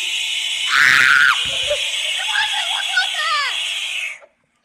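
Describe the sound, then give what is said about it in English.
A frog screams: one loud, harsh, high-pitched shriek, then a string of shorter wavering squeals over a steady hiss, stopping abruptly after about four seconds. “Oh, help the frog.”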